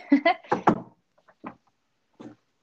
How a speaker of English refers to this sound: Right. I just knocked on wood so you wouldn't jinx it.